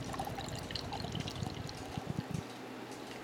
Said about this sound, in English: It smells fruity and yeasty. Can we just appreciate? Excellent pour.